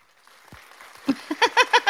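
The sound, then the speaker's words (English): A short run of about six quick hand claps in a steady rhythm, getting louder over roughly a second, after a brief quiet stretch with faint low thumps. “Giving you clapping hands.”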